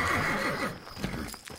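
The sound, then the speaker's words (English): A horse whinnies with a wavering, trembling call that fades out, followed by a few scattered hoof clops on a hard surface, clear with no voices. “The horses looked wrong somehow, but in a way I couldn't place, like shadows dripped from their manes.”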